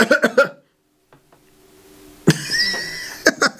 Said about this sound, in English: Don't cough.